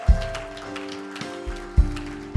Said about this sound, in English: Now let's give the Lord a hand clap of praise. Hallelujah.